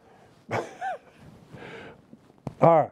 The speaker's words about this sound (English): Come here. Get up here. For whatever the reason, this dog has decided to lose its collective mind. Say hello, Lula.